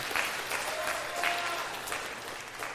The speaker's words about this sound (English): Why are we clapping for that? Who started that?